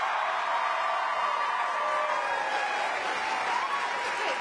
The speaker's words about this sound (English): Do you really love the overzealous studio audience who applaud at anything?